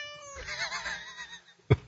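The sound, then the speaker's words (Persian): A cat gives one long, wavering meow for over a second, clear, followed by a short sharp knock just after it fades. “سلیمان خطاب به گربه.”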